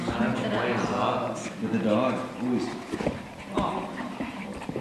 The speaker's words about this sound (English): Good girl. Stay. Good dog. Good girl. Be still. Now, I have no idea if this is going to work, since Labrador breathing is probably picked up on this thing as much as anything else